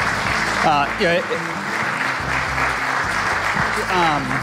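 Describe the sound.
A crowd claps steadily in a dense, sustained round of applause, with a few cheers and voices rising above the noise.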